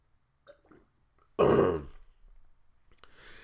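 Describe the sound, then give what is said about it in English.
A few faint sipping sounds of someone drinking water, then a loud, raspy throat-clearing exhale after the drink that fades out, with no talking. “Let me drink a drink of water real quick.”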